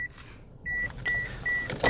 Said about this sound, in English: Shit, I didn't think my alarm would go off as I took my seatbelt off. Oh, that's annoying. Jesus. Sorry, guys.